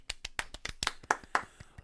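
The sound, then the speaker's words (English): A single person claps their hands about ten times in quick succession, moderately soft, with a slightly uneven rhythm and no voices. They are applauding others for successfully talking them into Doctor Who. “And I applaud you for that.”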